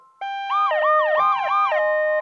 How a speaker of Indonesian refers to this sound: Setelah beberapa minit kemudian, kedengaran bunyi siren.